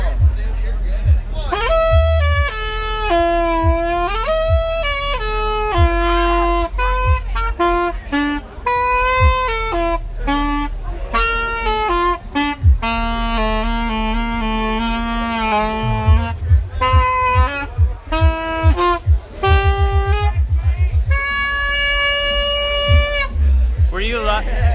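A loud horn instrument, played by a man in the woods, honks out a flowing pop melody, held notes and quick runs continuing nearly nonstop, with a low steady drone underneath and a faint murmur of people in the background.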